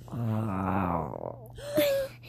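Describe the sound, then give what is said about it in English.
A voice imitates a mountain lion with a long, low, moaning growl lasting about a second, followed by a short, higher-pitched whining cry. “What does a mountain lion say?”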